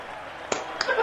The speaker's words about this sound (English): Yeah, woo, these guys. Yeah, let's clap.